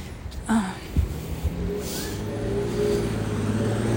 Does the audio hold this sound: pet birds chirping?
no